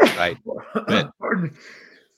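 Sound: sneeze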